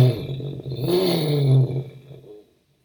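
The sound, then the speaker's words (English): A voice imitates a whirring top, a wavering, buzzing hum with a low droning tone that rises and swells for about two seconds before cutting off into silence. “In my own head, it sounded like a whirring top.”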